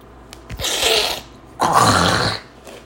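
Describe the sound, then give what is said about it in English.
Two harsh, raspy throat-clearing bursts, each lasting under a second with a brief pause between, like someone with allergies hawking up phlegm. No speech. “Oh my God, you guys just heard me cough or, you know, like hawk up a goober.”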